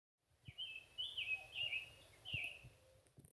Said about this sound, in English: And finally, the summer tanager.